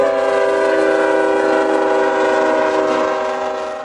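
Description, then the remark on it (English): A loud train horn blares in one long, steady blast for about four seconds, tapering slightly at the end, with no voices. “All right, back to the train. Choo-choo.”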